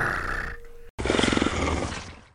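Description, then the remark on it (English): A video game alien creature, the Zerg Hydralisk, purrs when clicked on: a short throaty growl, a split-second break, then a loud, rough, rapidly fluttering purr that gradually fades out, with no talking. “I love the Hydralisk purr.”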